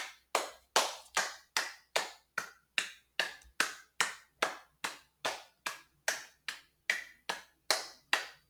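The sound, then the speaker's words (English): A steady run of about twenty sharp hand claps, evenly spaced at a brisk, regular rhythm, crisp with no voices present. “That was a lot of clapping.”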